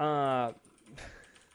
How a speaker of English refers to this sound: Excuse the loud typing that everyone's currently hearing.